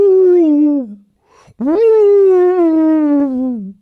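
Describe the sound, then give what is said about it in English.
A voice imitates a whale call: two long, loud moaning tones that glide slowly downward in pitch, separated by a short gap, the second swelling up and lasting longer. “That's the first time you've ever impersonated whales on this podcast.”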